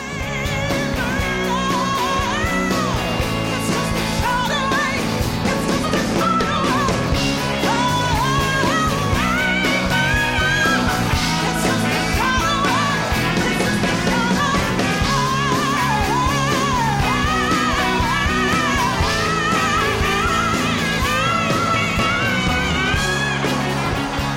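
A loud live rock performance on stage with full band, drums and guitars driving steadily, while a powerful female backup singer's voice wails and soars in long, bending notes above the mix.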